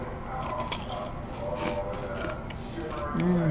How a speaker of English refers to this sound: Yeah, I was more careful biting into this one, but. Wow, it's so light that it feels like you could just eat a ton of these.